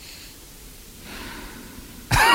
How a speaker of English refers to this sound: Stop with the breathing, will you?